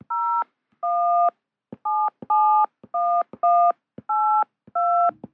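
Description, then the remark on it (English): A quick run of eight touch-tone keypad beeps heard during a phone call when someone picks up another phone on the same line, each a short steady dual-pitched tone separated by brief gaps, loud and clear with a slightly thin, phone-line quality and no voices. “So, you know, you're sitting there talking on the phone, then all of a sudden someone picks up the other phone and you hear.”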